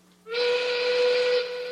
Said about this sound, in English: And that is your siren's call. It's a train whistle. And so, as that chuggin' locomotive sighs and whistles from another sort of emancipated township,